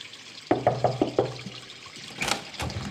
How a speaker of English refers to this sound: Our listeners deserve much better than listening to some guy sleeping to the sound of water.